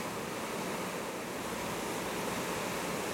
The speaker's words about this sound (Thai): ฝนเป็นธรรมชาติก็พอเข้าใจได้